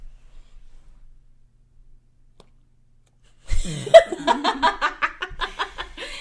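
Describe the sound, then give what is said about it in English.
After a few seconds of near silence, a loud burp erupts right over the microphone, immediately followed by rapid, rhythmic bursts of laughter that carry on to the end. “I didn't want to burp in your face.”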